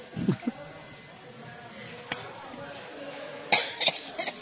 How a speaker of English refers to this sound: I still cough when I laugh. This effing sickness is the worst.